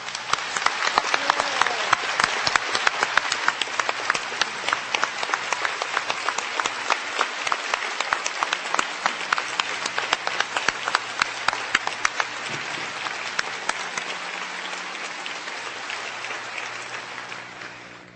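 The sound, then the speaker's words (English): Sustained applause from a large crowd of graduates and guests at a Princeton commencement ceremony, applauding the honorary degree recipients' accomplishments; dense overlapping claps filling the space at a steady, loud level for the whole stretch before tapering slightly at the end. “Now I would ask all of our honorary degree recipients to stand once more, and I would ask our graduates and guests to join me in applauding together their outstanding accomplishments.”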